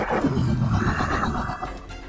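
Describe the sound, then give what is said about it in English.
A person vocally imitates a monster's roar: one loud, sustained, raspy growl that wavers in pitch for about two seconds before trailing off, sounding almost like a horse's whinny. “And then it's going to kind of roar at you again, like a...”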